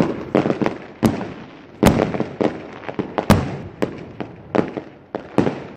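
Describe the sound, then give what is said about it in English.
A rapid, irregular volley of fireworks bursting: sharp loud bangs, some doubled, mixed with crackling pops and trailing hiss, continuing for several seconds with no talking. “I promised fireworks.”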